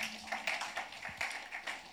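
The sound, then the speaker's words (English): A crowd claps their hands in praise to Jesus, a dense patter of overlapping claps with a loose, steady rhythm of louder pulses, fairly soft overall and with no talking. “Give a good clap of hands to Jesus.”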